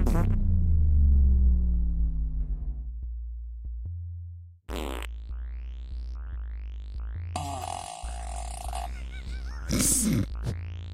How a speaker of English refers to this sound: That one really echoes. It really does. There's seven different fart sound effects in here, if you can believe that.